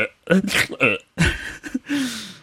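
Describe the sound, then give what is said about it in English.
A voice mimics snuffling and coughing from bad allergies: a few rough, breathy bursts and short voiced grunts in quick succession, ending on a longer, drawn-out nasal noise. “I apologize as well if you hear me snuffling and coughing on my words.”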